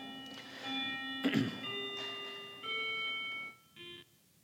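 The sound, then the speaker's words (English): A bell rings out in a series of clear, sustained tones, each new strike layering over the last, with a dull thunk partway through and a short final chime before it fades. “That's the bell I was warning you about.”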